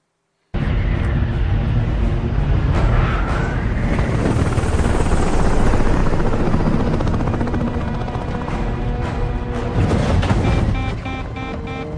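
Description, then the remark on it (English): A rescue helicopter flies out in a storm to rescue people in the water after a ship has gone down; its loud, steady rotor roar and engine whine fill the scene continuously, powerful, with dense low-frequency thumping throughout and a slight easing near the end. “A boat has just gone down, a ship's just gone down, and he's coming out in the chopper to rescue some people in the water.”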